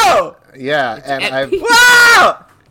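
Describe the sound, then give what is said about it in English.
A person lets out a few wavering, whiny vocal cries, then a loud, sustained high-pitched scream lasting under a second. “stop screaming.”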